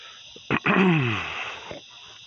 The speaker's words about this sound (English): I was breathing pretty heavily. So I moved the mic up, further up, so it won't catch my breathing as much. But I am walking fast, and I just woke up, so I guess my breathing will normalize, I hope, as we go.